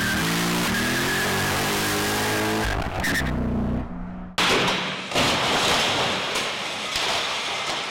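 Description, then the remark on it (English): A car engine revs hard, its pitch climbing as it accelerates, then gives way to a loud, steady rush of road and wind noise as the car speeds past at high speed. “It's impressive how fast the car can accelerate and its top speed and everything, but you have to come down from that, you have to slow down.”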